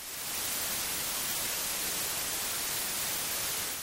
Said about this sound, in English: And when you combine sound waves at all different frequencies, you get noise.